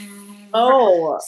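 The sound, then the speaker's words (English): A voice imitates the buzz of air conditioning heard during filming of The Bachelorette: a sustained droning tone that wavers slightly in pitch for under a second. A faint, steady electrical hum runs just before it. “you heard a slight buzzing, and that's probably because she was caught off guard and had the air conditioning on”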